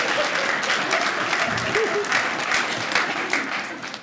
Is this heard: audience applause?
yes